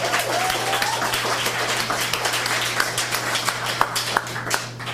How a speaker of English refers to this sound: And maybe if we clap loud enough, they'll even hear us just a few doors down. How's that?